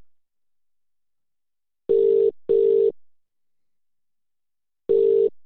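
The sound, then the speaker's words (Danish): A British-style telephone ringing tone heard through the line on a call to an English number: a steady mid-pitched double buzz, two short bursts close together, a long pause, then the next pair starting. Clear, with no talking. “Det lyder som en engelsk telefon.”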